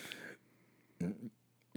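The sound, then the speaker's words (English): A short, low, croaking burp sits between two brief vocal bursts, with a faint steady hum running underneath the whole time. “Oh, I feel a burp coming.”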